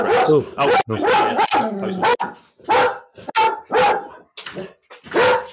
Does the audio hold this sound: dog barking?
yes